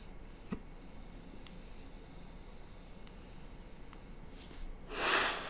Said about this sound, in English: Let me hit this vape pen real quick, guys.